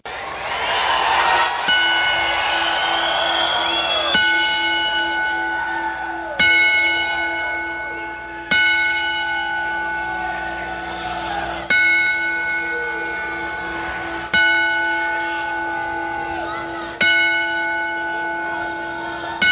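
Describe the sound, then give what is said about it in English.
A bell is struck again and again at slow, even intervals for a ten-bell salute in tribute to wrestling announcer Mean Gene Okerlund, who died at 76, each loud, clear clang ringing out and fading before the next. There is no talking. “So we here at the Rundown Wrestling Podcast would like to extend a 10-bell salute.”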